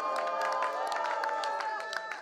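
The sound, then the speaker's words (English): A church audience claps and shouts praise to God together, dense overlapping hand claps under sustained shouting voices, loud, filling the space continuously for a couple of seconds. “Number one is clapping. And of course, number two is shouting.”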